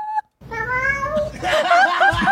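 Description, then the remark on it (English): A cat meows: a brief chirp, then a long, drawn-out yowl that bends in pitch and turns rougher and louder toward the end, with no one talking. “Fuck you, cat.”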